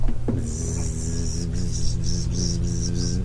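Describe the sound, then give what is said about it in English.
A steady droning buzz with a wavering pitch from many bees swarming inside a car in a parking garage, over a low rumbling hum and a pulsing high-pitched whine. No one speaks. “And they take you down into the parking garage, and and as you're approaching the car, you start hearing buzzing.”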